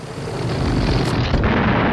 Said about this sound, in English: Bond shoves one of those gas pellets in his mouth. And roll the clip. I mean, like, how do I even explain this? Kananga turns into a balloon and pops.